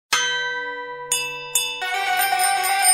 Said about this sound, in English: That's the halftime bell, which means it's time to hear what's making news around the rest of the world.